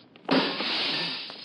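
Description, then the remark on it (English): A ground-level living room window of a locked house is smashed to get in: a sudden loud crash followed by about a second of harsh, scattering noise as the glass fragments break away. No one speaks. “Now, most of the glass is out of the way.”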